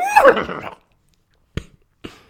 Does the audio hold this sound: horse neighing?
yes